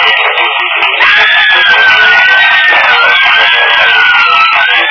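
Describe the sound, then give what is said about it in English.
A loud, continuous wall of women screaming and hollering in excitement for a singer at a nightclub, high-pitched shrieks blending into one sustained roar with a wavering piercing cry riding on top throughout. “Hey, what are the dames hollering about?”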